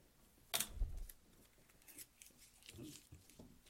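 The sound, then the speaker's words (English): A sharp tearing burst opens, followed by scattered crinkly rips and rustles of paper, fairly quiet, with no voices. “Yeah, all kinds of paper being ripped over here.”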